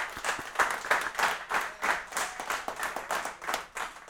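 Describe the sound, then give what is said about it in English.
An audience applauds a panel at Blue Box bar in San Antonio, Texas, during Bartender's Holiday, many hands clapping in a dense, crackling patter that holds at a fairly even level for several seconds with slight swells, no voices standing out. “If you want to applause this amazing panel of people, that'd be great.”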